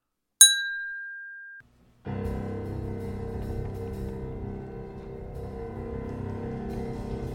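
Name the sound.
glass clink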